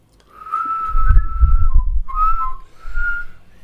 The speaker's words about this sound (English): I remember it by a little song. Oh, don't do that. It's the Mott and Bailey song. Oh, this is why you can't remember. Insert your own whistle here.